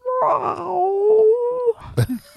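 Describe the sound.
A person's voice imitates a mournful dog whimper, the sound Hazel makes when she is in the window as they pull into the driveway: one drawn-out, high whining tone that slowly sags in pitch for over a second, followed by a few short breathy catches.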